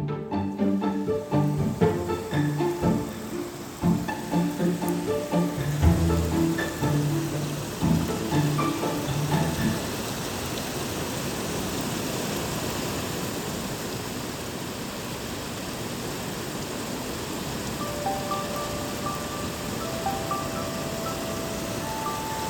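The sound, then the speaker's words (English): Heavy rain pours down in a dense, steady hiss that fills the whole recording, with some brief tonal sounds mixed in near the start before the downpour continues alone. “It's raining so hard right now.”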